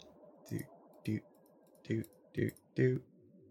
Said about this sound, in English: And we are going to roll Force Dice to make the Pool of Destiny.